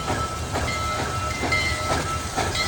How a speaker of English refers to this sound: The engines were lightweight and powered by steam created by burning wood